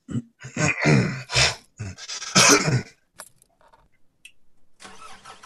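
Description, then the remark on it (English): A car engine starting up: several loud, rough cranking bursts in quick succession, a brief sputtering pause, then the engine catches and settles into a steady running hum. “So let's get the car started.”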